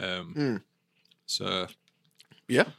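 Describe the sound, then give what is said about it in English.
Wet chewing of tough, chewy sweets with small clicking mouth noises, broken up by three short voiced murmurs. “Like you can have a good old chew on them. They're quite tough.”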